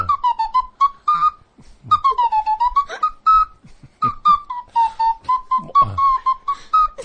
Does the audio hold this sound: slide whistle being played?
yes